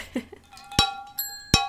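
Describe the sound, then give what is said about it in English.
Glasses clink together in a toast, two bright clinks less than a second apart, each leaving a high ringing tone that lingers. A brief murmur of voice comes just before. “And cheers.”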